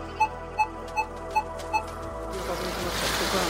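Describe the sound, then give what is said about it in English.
Five evenly spaced electronic beeps over a low hum, then a steady, fairly loud rush of clear, radioactive water from the site of a nuclear disaster flowing into the Pacific Ocean fills the last second or so. “Clear water flowing into the Pacific.”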